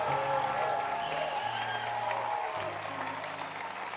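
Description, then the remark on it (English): A church audience claps hands for the Basontes groups of the church in a steady, dense wash of applause that holds for several seconds, with a low sustained organ-like tone and faint crowd murmur underneath. “Give the Lord a hand clap for the Basontes.”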